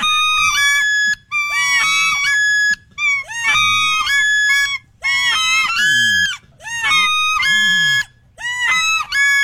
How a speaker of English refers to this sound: If you cover up the end of the call. See, that's, I'm doing it right. It just doesn't sound like a typical duck call, right? Or if I cover up the end of it. It applies back pressure and you get another level.